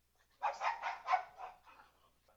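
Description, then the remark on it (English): A dog named Jabba barks in a quick run of four or five sharp barks that trail off into softer yips, with no voices around it. “Jabba, his fucking abortion dog.”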